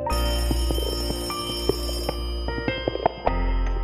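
A telephone rings with a harsh, metallic bell tone that sounds steadily for several seconds, broken by irregular clattering strikes. It is fairly loud, with no voices.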